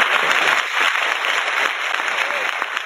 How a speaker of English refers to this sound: That crumpling you heard was applause. Yes. Yeah, it was not a paper bag being opened or closed. Did that come through loud? It came through.